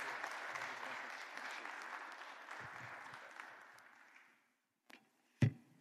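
An audience claps steadily for about four seconds, then the applause dies away, followed by a couple of sharp thumps near the end.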